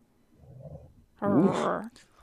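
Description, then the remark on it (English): A female dog gives a low, rumbling growl that swells into a louder, harsher snarling grumble lasting under a second, with no one talking over it. “She's salty. She needs a boy dog.”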